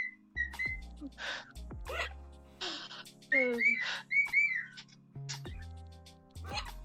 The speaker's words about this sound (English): Flirty bird. He's amazing.